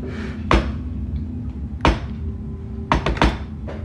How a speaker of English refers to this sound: You do hear, though, that this door that sort of brought people in, there's sort of this knocking on the door.